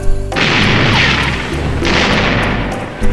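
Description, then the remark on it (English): A ship's cannon broadside firing: two heavy, loud booms about a second and a half apart, each trailing into a long rumbling roar, with another blast starting at the very end. “Give him another broadside.”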